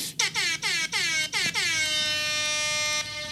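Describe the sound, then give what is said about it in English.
A loud hip-hop air horn sound effect blares in a quick series of short stuttering blasts, then holds one long sustained blast before cutting off abruptly. No voices. “There you have it—that rap air horn that usually tells you that we're about halfway through our show.”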